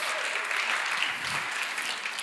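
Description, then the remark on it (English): A crowd claps in a steady, dense round of applause, the many hand claps blending into a continuous wash of sound at an even loudness throughout. “Let's give that one a round of applause.”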